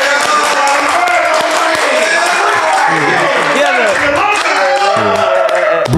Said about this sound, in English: Everybody start clapping right now.